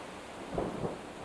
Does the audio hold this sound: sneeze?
no